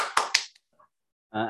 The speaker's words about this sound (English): He claps his hands.